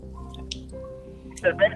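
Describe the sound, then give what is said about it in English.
A caller's faint, garbled voice comes through a phone like a bad line, muffled and unintelligible, ending in a couple of louder warbling, bubbly bursts. “You gotta fix your phone. Yeah, water's sounding real low.”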